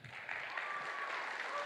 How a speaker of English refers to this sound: But this is the guy that I'm so excited for. So please give your rapt attention and your hearty applause